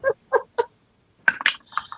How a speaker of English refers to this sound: the chickens are flying out of there and squawking